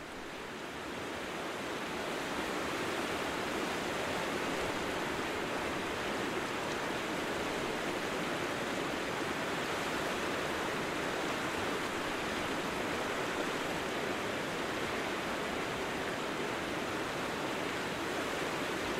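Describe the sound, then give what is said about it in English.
A river flows steadily past the bank where sheep graze at its edge, in a continuous, broad rushing wash that swells in over the first couple of seconds and then holds even and fairly loud, with no voices. “This idea was conceptual, recording and hearing what the sheep hears as they lay there in the sun or sheltering from wind, chewing on whatever grass they have at their disposal at the edge of the river.”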